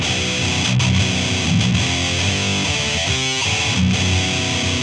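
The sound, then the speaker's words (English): A heavily distorted electric guitar plays a short riff of sustained, gritty chords and a few quick note changes, loud with no talking. “pretty much anything you play with distortion sounds good.”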